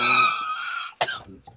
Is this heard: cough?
yes